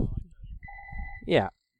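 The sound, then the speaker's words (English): A phone rings, giving one short, steady electronic tone with two pitches that lasts about half a second. People talk over and around it, and the voices rise just after the tone stops. “Sorry, I'll just turn off this phone.”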